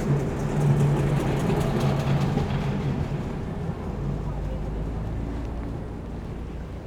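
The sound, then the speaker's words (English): A city tour tram in Christchurch rumbles steadily past, its low mechanical drone and rattling wheels filling the air, with faint hum and clatter fading slightly toward the end. “I've really enjoyed wandering around Christchurch on foot, but you always have the option of taking a city tour by tram. They go trundling past every few minutes.”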